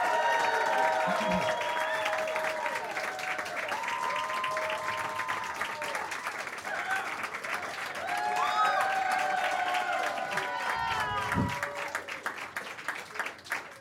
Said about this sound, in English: So without any further ado, ladies and gentlemen, please give a warm round of applause for Mr. Kevin McDonald!